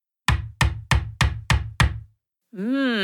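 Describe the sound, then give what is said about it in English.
A hammering sound effect: six sharp hammer blows land in a steady, even rhythm, each with a short low ring. After a brief pause, a sustained, wavering tone begins. “Our sound that we are going to listen for today is the sound of hammering.”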